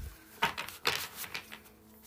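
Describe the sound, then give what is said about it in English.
Soft papery riffles and light taps from a deck of tarot cards being shuffled, arriving in a few quick bursts over two seconds with no one talking. “I will be shuffling the tried and true Tarot Mucha.”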